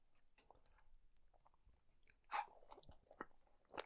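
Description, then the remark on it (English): Wet chewing of a soft, sticky gummy snack close to a microphone, with irregular smacks and squelches, a few louder crunchy bursts near the end, and no talking. “Keep chewing into the mic.”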